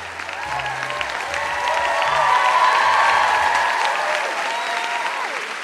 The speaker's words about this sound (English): That was amazing. I wish I could do that every day. You just like walk into your living room and there's like a big cheering section.